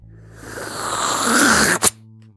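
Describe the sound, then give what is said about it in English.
A voice imitates spoiled milk clumping out of a container as it is poured into a pot of Kraft Dinner: a breathy, gurgling hiss swells for over a second, then ends in one sharp wet splat before silence. “And this clump of just squishy, chewy. White garbage comes out of that container and slops into our delicious neon orange bowl of or pot of heaven.”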